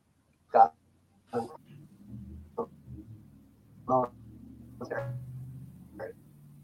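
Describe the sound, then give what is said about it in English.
A dog gives about six short, sharp barks spaced irregularly over several seconds, with a brief whimpering whine mixed in, over a low, steady background hum. “Did he train that dog?”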